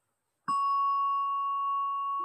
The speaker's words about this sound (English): So you sit down, you strike the bell. I'm going to keep doing this.